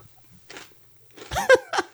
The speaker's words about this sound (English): You gotta stop. You're just like crunching chips and like moving the bag around. It's impossible.